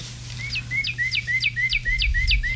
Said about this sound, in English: What is that? A bird, silly. I know that, but how does it work? The metal part rubs up against the wood. It sounds real. It fools the birds.